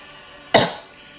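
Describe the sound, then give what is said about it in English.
A single sharp cough bursts out and fades quickly, with no talking around it and only a faint background hum. “What, when you just coughed and it came smoking that?”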